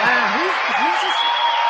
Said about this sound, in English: Wow. Look at how strong the clapping and the shaking is. Look at all these people, all these Scientologists here. Clap like you mean it. Even Tom's clapping like he means it.